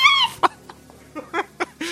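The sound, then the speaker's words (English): A voice mimics a clucking bird: a shrill opening squawk, then a string of short, uneven clucks, finishing with another drawn-out squawk. “I'm going to drink my gigantic liquid and turn into a big fucking bird.”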